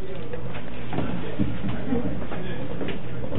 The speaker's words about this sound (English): I'm just shutting the door here.